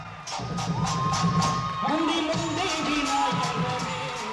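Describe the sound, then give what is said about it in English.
A huge crowd in a theatre cheers loudly and steadily as young people in traditional South Indian dress perform on stage at the opening of the Street Child Cricket World Cup 2023, with scattered high whoops and shouts rising above the roar and what sounds like clapping mixed in throughout. “And the young people proceed to give the performance of their lives on that stage to a huge crowd in the theatre.”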